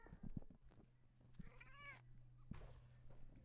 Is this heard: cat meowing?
yes